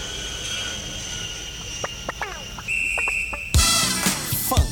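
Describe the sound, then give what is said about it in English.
A jet airplane engine whines with steady high-pitched tones and scattered squeaks, then a loud rushing roar surges in for the final second. No one speaks. “Should we go on an airplane, shall we?”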